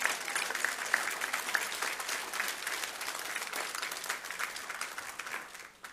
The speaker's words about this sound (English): You can clap your hands.